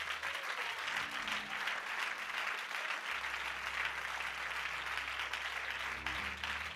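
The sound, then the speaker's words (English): A large church crowd applauds steadily after the announcement of the Million Dollar Mission, the church's plan to give $1 million to missions in the next 5 years. Dense clapping fills the space with no break, with a low sustained organ-like hum underneath throughout. “I hear you clapping.”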